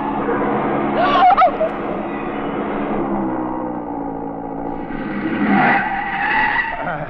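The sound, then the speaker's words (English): A sports car skids on the road, its tires squealing in two loud, wavering bursts over a steady engine roar, intense, with no talking. “That Porsche ahead. He sees my lights. No, mon pauvre, no, not so fast.”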